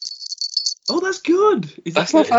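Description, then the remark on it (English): A bright, high metallic jingle of a small bell-laden cat collar, belonging to Greg the cat, being shaken rapidly for under a second, then a person speaks while the faint jingling returns beneath their voice. “That's the cat's collar that I take off him now because he makes too much noise in the show.”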